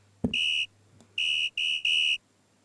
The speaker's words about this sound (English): And in order to add additional power to it, listen to my instruction. Here comes the fire alarm. Are you ready?